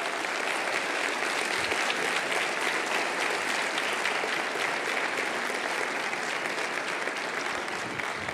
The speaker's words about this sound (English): That's the first time they applauded